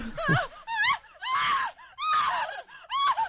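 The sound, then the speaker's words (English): A voice in a horror film lets out a series of loud, drawn-out moaning screams, about five wavering cries separated by brief gasping pauses, intense with no speech. “Now, that could also, speaking of body genres, that could have been taken out of a porn film. Yeah, that could have gone either way on that. It's a horror film, and it's funny how that works.”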